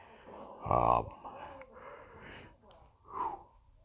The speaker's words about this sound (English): Excuse me, I'm yawning here, and it's Saturday morning.